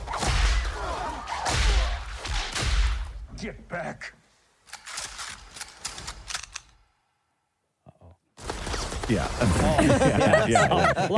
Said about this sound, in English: He brought a whip to a gunfight. I was going to say, lots of bullets, lots of whips.